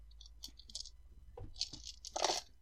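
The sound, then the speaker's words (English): A bunch of dice rolled for a constitution save rattle and clatter in a quick series of bright, crunchy bursts, ending in a louder jumble of clicks as they tumble together. No one speaks. “I gotta roll a bunch of dice.”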